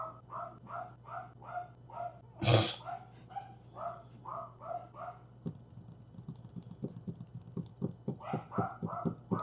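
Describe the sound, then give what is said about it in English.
Dogs bark in quick, steady runs of sharp yaps, broken by one loud burst and a stretch of clicking and tapping before the rapid barking returns. There is no talking. “The wolves are barking.”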